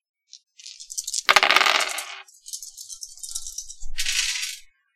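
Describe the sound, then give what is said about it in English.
Five dice rattle and clatter as they are rolled for a physique roll in a game, a short shake followed by a loud tumbling burst and more scattered rolling clicks, with no talking. “Okay, so then is that 5? 5 dice.”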